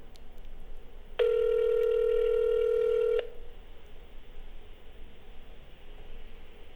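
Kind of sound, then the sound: signal or alarm, phone call ringing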